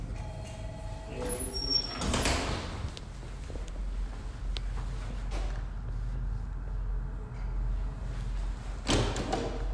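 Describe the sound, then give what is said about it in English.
Doors are pushed and rattled in two clattering bursts, one early and one near the end, over a steady low rumble with faint voices in the background. “What's up with them in these doors?”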